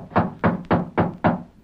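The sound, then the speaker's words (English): Five firm knocks on a door in a quick, even rhythm, each a loud, solid thud with a dull, low body, and no voices. “I told you you didn't have to knock.”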